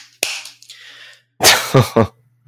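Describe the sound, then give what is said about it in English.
Hand clapping to welcome a new team member: a single sharp hand clap, a brief pause, then a quick run of about three loud, crisp claps with a short hissy tail, and no voices. “First of all, let me clap you in.”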